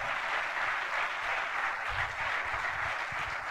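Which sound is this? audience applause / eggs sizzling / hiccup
audience applause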